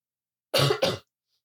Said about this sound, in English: Okay, sorry about the coughing.